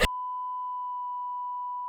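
A steady, loud pure tone holds unbroken for about two seconds, a single continuous censor bleep that starts abruptly after a brief burst of noise, with no talking over it.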